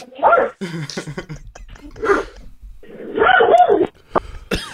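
A dog barks and whimpers in a series of uneven bursts, some sharp and high, others lower and drawn out, fairly close and moderately loud, with no talking over it.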